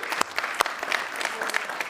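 Steady applause from an audience, many hands clapping at once in a dense, crackling wash with a few sharper, louder claps standing out, sustained for the whole two seconds.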